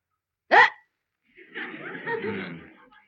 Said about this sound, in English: I've got the hiccups.